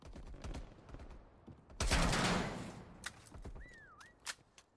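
Bursts of gunfire crack repeatedly, with one loud, sustained roar of fire, then a brief wavering whistle of a passing bullet dips and rises in pitch between further sharp shots.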